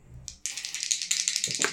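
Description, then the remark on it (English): A twenty-sided die, rolled as a straight d20 roll in a dice game, rattles and clatters across a hard surface in a quick, continuous burst of bright clicks, ending with a duller knock as it settles. No one speaks. “We're going to do a straight d20 roll for you.”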